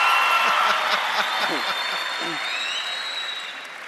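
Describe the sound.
A round of applause from a church audience for a pastor, dense steady clapping that holds loud for several seconds and eases off slightly toward the end, with a few voices mixed in underneath.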